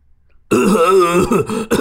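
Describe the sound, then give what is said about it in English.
After a brief silence, a parrot imitates a raspy, chesty human cough, as though from a chest infection, with a throaty, gravelly rumble, loud, breaking into a couple of rough hacking bursts near the end. “Scooby would only say, hello, and then cough as though he had a chest infection”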